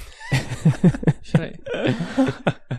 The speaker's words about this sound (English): And so, dang it, I think you gave me this bug you got over the internet. Over the internet. I wasn't coughing before this cast. Oh, crap. Should I put a mask on?